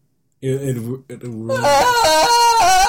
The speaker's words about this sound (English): And you'd be doing that scream you always do. But a longer one. Can you do it? Can you do a longer one? No.